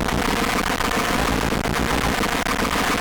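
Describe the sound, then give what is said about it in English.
Dense, harsh electronic noise from self-oscillating vacuum tubes, with every control cranked up, roars without a break: a loud crackling wall of distortion with a rough, sputtering texture over a low droning hum. No one speaks. “Now Graham's showing me that the tubes themselves can kind of self-oscillate. You pretty much crank everything. It's a very harsh noise kind of sound, yep.”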